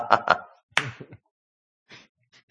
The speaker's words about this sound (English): You get the one clap. Which is one more than it deserved.